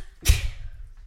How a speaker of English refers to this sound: And that was a sneeze. Bless you.